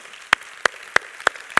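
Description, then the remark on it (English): A church audience claps together in steady unison to give God a clap, five sharp, crisp claps evenly spaced about three per second, over a faint murmur of background noise, with no talking. “Come on, let's give God a clap.”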